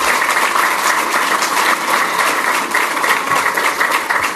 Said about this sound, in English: And for 2 years, I worked with a boss who suffers no fools, who demonstrated what unapologetic leadership as a black woman looked like. You can clap for that.